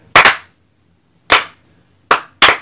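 Slow, uneven clapping: a quick double clap, a long pause, then two more sharp claps spaced apart. Loud, crisp hand slaps with no voices.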